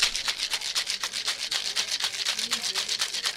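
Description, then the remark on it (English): A cocktail shaker holding vodka, Saint Germain, fresh lemon and lime juice, cranberry juice and grapefruit is shaken vigorously, producing a fast, steady rhythm of bright, gritty rattles, roughly five strokes per second, continuing evenly for several seconds with no one speaking. “A little bit of grapefruit to complete the citrus notes. And then a vigorous shake.”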